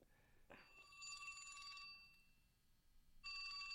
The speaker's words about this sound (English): Speaking of broadcasting, there's my phone. Hold on.